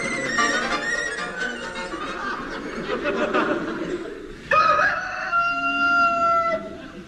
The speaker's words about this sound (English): We included that recording of a cockerel for people who like that sort of thing.